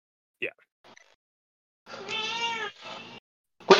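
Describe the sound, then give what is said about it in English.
A cat meows, one drawn-out harmonic meow followed by a shorter one, then a sharp loud cry at the end, with a few faint chirps before it and no talking. “Yeah, Chrissy, you hear what this cat does?”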